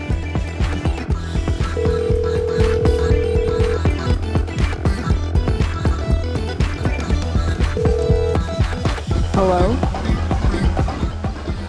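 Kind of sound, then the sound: signal or alarm, telephone dialing and ringing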